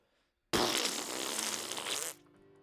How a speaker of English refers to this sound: I think it's less, it's more just I'm not gonna think about anybody else, and I want to fart.